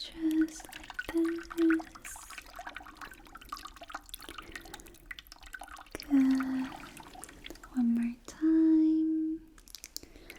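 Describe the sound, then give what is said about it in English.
Soft pouring and dripping water poured from the top of a person's head to wash them off, with scattered splashes and a few short pitched gurgles; faint whispering sits in the background. “some water from the top of your head”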